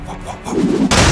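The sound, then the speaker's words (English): Heavy booming of tank cannon fire and explosions as tanks roll over rubble in the streets and aim up at airships, a low rumbling roar building up before a loud, sharp blast bursts in near the end, intense. “Down below, tanks rolled over rubble in the streets and aimed up at the airships. Thaboom, thaboom, thaboom!”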